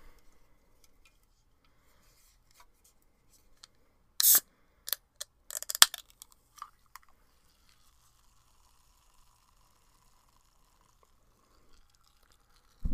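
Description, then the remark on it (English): A Diet Coke can is cracked open: a sharp snap and a brief hiss, then a few small metallic clicks and faint crackles of fizz. “I think first thing I'm going to do is actually open up the Diet Coke I have right here.”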